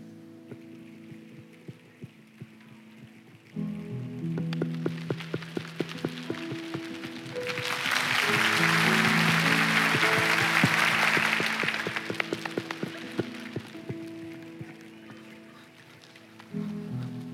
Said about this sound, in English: Y'all, we just made it rain again right here.